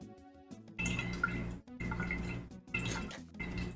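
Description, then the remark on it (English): Water sloshes around inside a bottle about a fifth full in three quick shaking bursts, fairly loud, with brief pauses between them and no talking. “I've got my bottle here. There's about, you know, a fifth of it has water left in it.”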